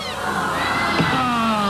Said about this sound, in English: Little baby kitty cat. He must have heard his song and come over to play with us.